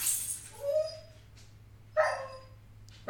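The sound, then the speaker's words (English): A pet dog yelps in short, high-pitched bursts: a whiny yelp near the start, another around two seconds, and a sharp one at the end, with a low steady hum beneath. “So while the yelping continues, this is my mom's dog.”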